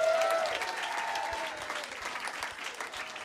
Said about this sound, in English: And round of applause for Rad Dad, yeah?